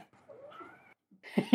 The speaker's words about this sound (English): Cat, stop. Shh. Yes, I know. I hear you. You're there. Shh. Cat, shh.